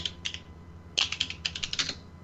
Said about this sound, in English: I hear typing. Somebody's taking notes.